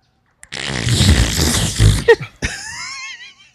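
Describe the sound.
A voice imitates a cake fart with a long, loud, sputtering raspberry, followed by a short squeaky burst and a rising whiny tail, alone without talk.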